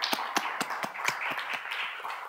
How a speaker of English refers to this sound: So would you join me in encouraging them by giving them a round hand of applause for preaching the Word of God faithfully.